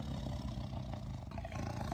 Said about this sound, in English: The low growl came from the clearing.